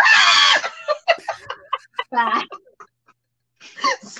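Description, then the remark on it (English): A voice lets out a loud, shrill, seagull-like squawk, mimicking the bird, then breaks into quick talking before a second, shorter screechy cry at the end. “So this makes her scream out like a seagull.”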